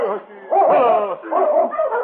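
Sled dogs bark and whimper in a few overlapping, yelping bursts, the whining cries rising and falling without pause for about two seconds.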